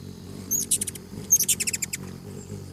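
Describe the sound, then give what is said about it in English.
Two quick bursts of high, thin hummingbird chirps, each a rapid run of squeaky tweets, over a low steady hum in the background. “Have you ever watched a hummingbird hovering as it sips from blossoms filled with nectar?”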